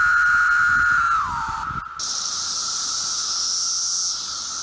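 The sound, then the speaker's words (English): A loud, steady insect drone of 17-year cicadas: a whining tone that bends downward, then gives way to a sustained high-pitched buzzing hiss that holds for several seconds. “Thank you both for being here and for giving us lots of interesting insight about these 17-year cicadas, which we can expect to see probably over the next couple of weeks.”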